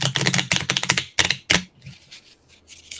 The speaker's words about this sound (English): I'm going to practice my card shuffling.